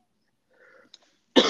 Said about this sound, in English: Sorry, I got my allergies, man, kicking me. I got a cough like every single.